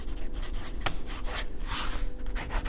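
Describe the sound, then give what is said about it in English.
A pen nib scratches steadily across paper in dry strokes as it is tested in a quiet place, with a sharp tick partway through and a brighter, louder rasp near the middle; no voices. “We try to make sure that when we do test the nib, so it's in a quiet place, but I always like to hear that noise of the nib against paper.”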